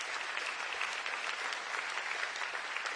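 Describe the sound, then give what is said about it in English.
An audience claps steadily in praise of the Lord, dense overlapping hand claps forming a continuous wash of applause at an even, moderate loudness with no voices standing out. “At this time, I almost want to stand up and give the redeeming God of glory a hand clap for saving our rotting souls.”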